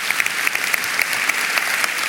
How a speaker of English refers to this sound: Amen. Can we give the Lord another round of applause this morning? God bless you.